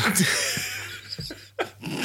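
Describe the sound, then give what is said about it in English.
A dog growls low and lets out short whimpers over a steady hiss of background noise, with a sharper yelp-like burst near the end. “I'll leave you with your beloved dog.”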